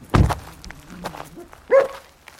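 A dog, one of two kept at a house outside the village of Port Row in County Tipperary, Ireland, overlooking Lough Derg, gives two short barks about a second and a half apart, the first a sharp, gruff burst and the second a higher, more tonal yelp, with quiet background between.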